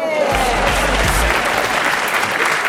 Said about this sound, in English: They get up. They do silly dances. The audience does all it knows how to do, which is applaud, because the laughter is...